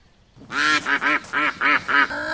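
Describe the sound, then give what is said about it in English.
A human voice attempts a rooster's crow but produces about six short, nasal, quack-like squawks in quick rhythmic succession, loud with no other sounds. “He can't even make the cock-a-doodle-doo sound. Oh yeah? Then what's this?”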